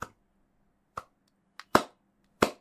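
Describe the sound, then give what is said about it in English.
Slow hand clapping: about five sharp claps spaced unevenly over a couple of seconds, with near silence between them and no voices. “Well, slow clap. Slow clap.”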